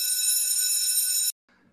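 A bright, shimmering bell rings in one steady, sustained burst for over a second, then cuts off abruptly, leaving a brief faint rustle after.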